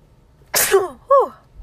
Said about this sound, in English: The fact is, just now, I need to sneeze.